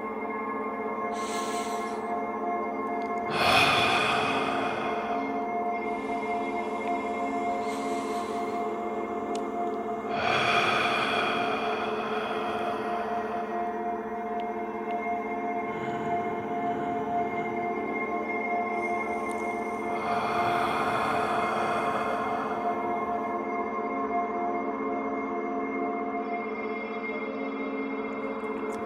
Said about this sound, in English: Close your eyes. Listen to my breathing. Fall in sync with me.